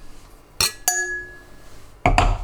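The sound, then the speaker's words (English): Drinking glasses clink together as they're picked up for pouring a champagne smoothie cocktail: two quick bright chinks, one leaving a ringing tone, then a louder clattering knock a moment later. No one speaks. “So, now... take your glasses.”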